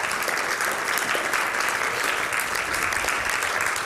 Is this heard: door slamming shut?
no